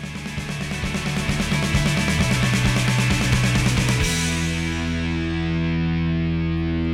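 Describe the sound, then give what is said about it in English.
A loud, distorted rock song intro with a huge, pounding drum part of rapid driving hits under heavy guitar for about four seconds, then a sustained ringing chord that holds to the end. No voices. “opens up basically with this huge drum part on the, you know, he's pounding that intro yeah.”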